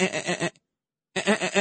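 Two loud sheep bleats with a quavering, vibrato tone, each lasting about half a second and separated by a brief silence. No one speaks.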